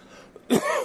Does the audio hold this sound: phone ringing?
no